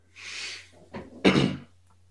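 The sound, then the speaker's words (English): A heavy, solid secure door swings shut and locks down with a hissing rush, a short knock, then a loud, solid clunk as it settles into place, over a low steady hum. “You just hear a ka-chunk of the big kind of solid door probably locking down.”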